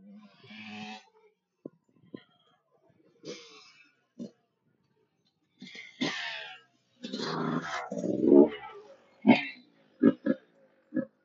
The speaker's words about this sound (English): Oh my goodness. Okay, hold on. We have a lot of dogs here. Three.